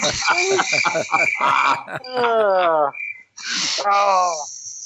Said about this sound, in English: There's a bunch of crickets around here. I was searching fast for that audio effect.